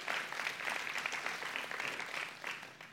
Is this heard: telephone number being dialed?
no